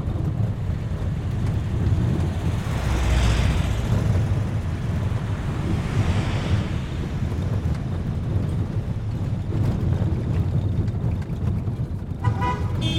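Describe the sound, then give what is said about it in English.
Trucks carrying people through Baguio up to Camp Holmes rumble steadily along a road, a deep continuous engine drone with rushing wind noise over it and a brief horn-like toot near the end. No one speaks. “How else are they going to get us up to Camp Holmes in these trucks?”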